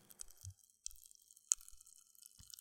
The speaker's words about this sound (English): These crystals are Pop Rocks. Yeah, Crystal Crunch Rocks are Pop Rocks. In fact, I have some spare ones here. Can you hear that?